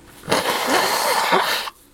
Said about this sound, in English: I'm gonna blow my nose. This is gonna be good audio.